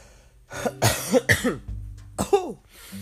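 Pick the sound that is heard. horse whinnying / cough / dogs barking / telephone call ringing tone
cough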